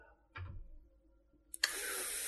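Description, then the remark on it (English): A brief, low, buzzy blown raspberry made with the lips, like a mouth fart, lasting about a quarter second. After a short pause, a loud steady hissing spray starts and continues to the end. “Fart noise.”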